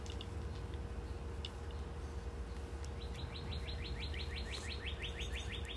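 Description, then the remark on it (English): A bird chirps in a quick, steady series of high, repeated notes over a constant background hiss, starting partway through and continuing to the end. “It's definitely a bird.”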